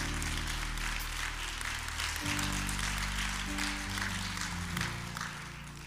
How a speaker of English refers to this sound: He deserves a better hand clap than that.